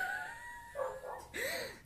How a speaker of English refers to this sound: I'm pretty sure the dogs are eating each other.